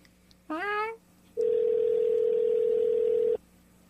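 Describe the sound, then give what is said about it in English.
A phone call's ringing tone: one long, steady electronic beep of about two seconds, fairly loud and clear, preceded by a brief rising voice-like sound. “Well, let's see if she answers.”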